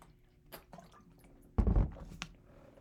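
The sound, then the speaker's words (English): A short wet slurp or gulp as someone drinks water lands midway, preceded by a few faint clicks and handling taps, with no one talking. “Let me get some water.”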